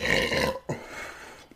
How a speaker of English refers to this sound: Oh, here's the burp.